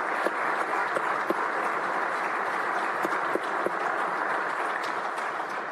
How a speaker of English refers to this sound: if the four of you would stand, raise your hand, and let's give them a round of applause and just thank you very much.